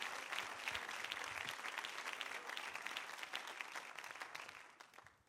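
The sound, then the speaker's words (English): Sustained applause from a crowd, many hands clapping in a dense, steady patter that holds fairly loud for several seconds before tapering off at the end. “Give him another hand clap if you would.”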